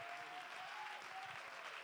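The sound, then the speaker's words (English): An audience claps and applauds steadily in praise to God, a dense, continuous wash of many hands at even loudness, with a faint sustained tone running beneath the clapping. “Somebody clap. Somebody shout.”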